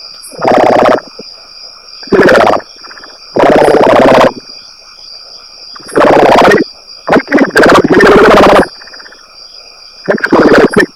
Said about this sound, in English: Frogs?